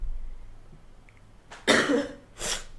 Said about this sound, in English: I kind of have a cough, so please pardon me.